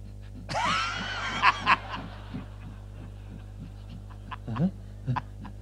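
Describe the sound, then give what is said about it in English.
A person's voice imitates a dog panting and whimpering, with a burst of breathy, high-pitched noise followed by short gasping pants and little yelps, moderately loud. “And the dog was like...”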